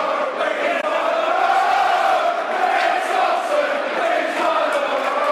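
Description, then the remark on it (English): A large football stadium crowd roars loudly and continuously for several seconds, a dense wall of voices with chanting swells rising and falling, no single voice standing out. “That's what the crowd think.”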